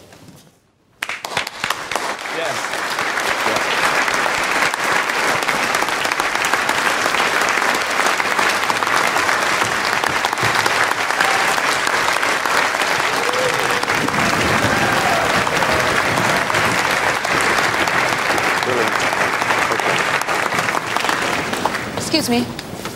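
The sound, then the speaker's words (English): Sustained, dense applause from a large audience after a concerto performance that is being recorded, a steady roar of many hands clapping at once that begins abruptly and holds at a loud, even level for over twenty seconds. “And this time we will record it and we will applaud it.”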